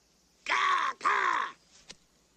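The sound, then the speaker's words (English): Two loud, harsh, drawn-out bird calls in quick succession, raspy and crow-like, followed by a faint brief sound. No talking. “It's some kind of a bird.”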